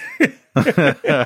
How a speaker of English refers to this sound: He went down. What is he doing? He's coughing. He can't make noise? Yeah, he can't. He turned his mic off. Let's talk shit about him. His mic's off. He's choking on a hot dog.